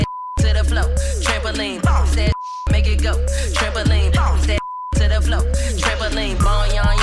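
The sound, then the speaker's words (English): A loud dance track plays with a vocal, interrupted three times by short, steady censor bleeps covering a swear word, the S word, once at the start and twice more, each briefly replacing the music. “What are you beeping out? The S word.”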